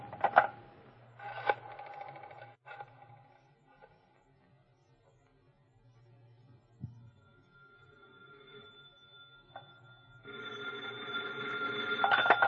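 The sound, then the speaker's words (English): A telephone is dialed in a few short bursts, then after a quiet stretch a ringing tone swells near the end, all over a low steady hum with no talking. “Hand me the phone.”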